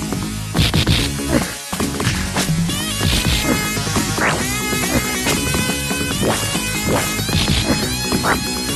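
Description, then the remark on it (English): Audio from a 1994 Sega Genesis side-scrolling beat-em-up game by developer Acclaim Studios Manchester: buzzy, dense synthesized music with a steady loud backing, punctuated by sharp percussive hits and crashes throughout, with no talking. “Hop it to the 94, playing on the Genesis.”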